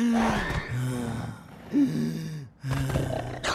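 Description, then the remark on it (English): A voice imitates the labored breathing of a coronavirus symptom, trouble breathing: a few loud, strained gasping breaths with a hoarse, groaning rasp, coming one after another with brief pauses between them. “Third, trouble breathing. It might even sound like this.”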